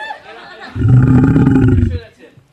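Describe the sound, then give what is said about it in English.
A bear roar sound effect: one deep, rumbling growl that swells abruptly, holds loud for about a second, then drops away, with fainter voice-like sounds before and after. “It must have really blown your mind when that bear just kept chiming in there at the end.”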